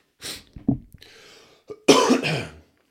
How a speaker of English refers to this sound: Sorry for all the sniffling and this and that. I don't know where it's just kicked in out of the blue from. Like, a hair fever, I don't even feel like it's that bad.